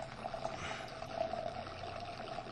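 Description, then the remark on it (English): Wine pours steadily from a bottle through an aerator top that aerates it as it pours, a continuous gurgling, bubbly-sounding, airy trickle with a faint whistling tone, fairly quiet, with no talking over it. “Yeah, so we have this little aerator top that we put on in case you can hear it pouring.”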